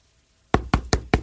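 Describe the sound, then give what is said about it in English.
Four sharp, loud knocks rap on a front door in quick, slightly uneven succession after a moment of quiet, each with a solid, resonant thud. “Knock on the door.”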